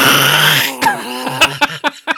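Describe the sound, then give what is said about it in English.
A voice imitates rubber car mats left under a car scraping on concrete as the car steers away: a rough, gravelly rasp followed by a run of short, loud, harsh bursts in an uneven rhythm, with no other talking. “He just immediately started steering, and all you heard was the rim mats on the concrete underneath going.”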